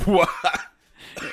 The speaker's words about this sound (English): Don't even cut that coughing out.